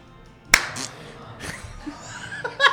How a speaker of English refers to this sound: All right, you clap when you're ready.